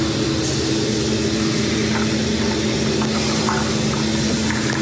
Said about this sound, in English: So they're in a bathroom. He's got a Mario Kart RC car. Why would you do that? Dude set up an RC car and drove it into the other stall while the dude was taking a shit.